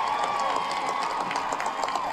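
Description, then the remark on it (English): A large rally crowd on Boston Common, fired up by Massachusetts Democratic Senator Elizabeth Warren, cheers and applauds in a steady, dense roar, with scattered shouts and whistles rising above the continuous wash of clapping and voices. “Massachusetts Democratic Senator Elizabeth Warren fired up the crowd on Boston Common.”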